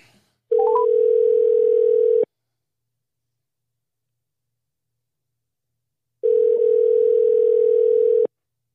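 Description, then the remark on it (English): A telephone line tone as a prank call is placed: a few quick dialing beeps, then a steady, low-pitched ringback tone sounding for about two seconds, a pause of silence, and a second identical ring. No voices. “Let's start this prank call.”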